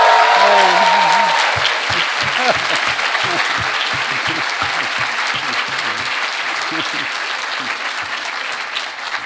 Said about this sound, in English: So please allow me to be the first to congratulate those of you who will graduate tomorrow, the spectacular, beautiful, wonderful class of 2023. Let's join and give them a hand of applause.